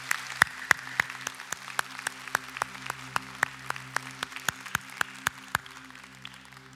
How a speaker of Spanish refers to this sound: A los padres, ¿por qué no le damos un fuerte aplauso a nuestro Padre Celestial por este día?